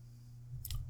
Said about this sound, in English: Keep going because I'm chewing my gummy vitamin. Yeah, very loudly, by the way.